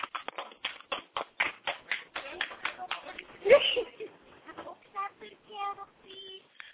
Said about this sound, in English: I know y'all clapping.